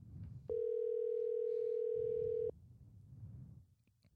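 A single steady electronic ringing tone of an outgoing phone call to the caller's sister, lasting about two seconds and clearly loud over faint low background rumble, then cutting off abruptly.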